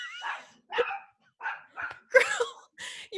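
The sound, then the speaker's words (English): A small dog named Chaplin barks in a quick, uneven burst of about six sharp, high-pitched yaps, fairly loud, with brief pauses between them and no talking. “Your dogs are on attack mode now.”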